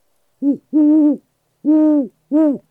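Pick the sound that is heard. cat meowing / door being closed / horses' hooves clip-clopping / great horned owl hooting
great horned owl hooting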